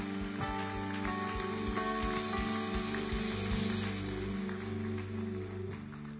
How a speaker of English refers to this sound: Come on, let's give the Lord a clap offering this morning, shall we?